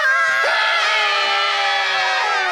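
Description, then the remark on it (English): A loud, sustained burst of excited screaming from several voices, high-pitched and continuous for a couple of seconds, with no speech over it. “That's right. Scream. Scream out there.”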